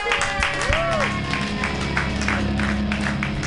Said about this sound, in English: Keep it clapping for him. In and out. Full house here right now at Happy Hour.